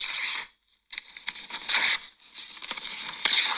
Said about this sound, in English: Is that ripping paper? Yeah, that's paper. Okay. Paper ripping. Okay. Or tearing paper, whatever.